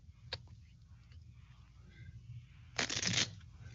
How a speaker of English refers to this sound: Now I want you to take You give that deck a shuffle. Okay.